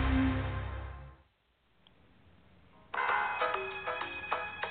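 A phone ringtone starts up after a short lull, its bright electronic tones repeating in a quick melodic pattern, fairly loud, following a burst of louder noise at the start.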